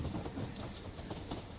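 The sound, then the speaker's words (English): A train rolls steadily along the rails on the journey from London up to Stoke-on-Trent, with a continuous low rumble and faint rhythmic clacks recurring every fraction of a second, heard from inside the carriage at a moderate, even level. “The train journey up gives Rob a chance to reread Jeff's book, The London Underground Serial Killer.”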